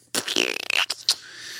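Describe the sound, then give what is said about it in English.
A short, wet raspberry blown with the lips, a buzzy mouth-made fart noise lasting under a second, followed by a couple of quick breathy bursts, fairly loud. “Fart noise to keep from crying.”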